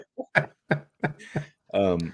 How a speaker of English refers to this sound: I am coughing, but that's, I think, you know, we always get the con crud from this anyways, because really you're burning the candle at both ends when you do this.